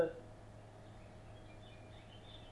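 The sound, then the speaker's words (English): A steady, low air purifier hum with a soft wash of noise runs throughout a quiet meditation session, while a few faint, high bird chirps flicker in the background during the second half. “And it's nice and quiet here, a few chirping birds, hum of the air purifier, so this sort of white noise helps with the often helps with the meditation.”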